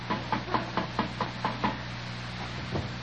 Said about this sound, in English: I go up and I knock on the door, see?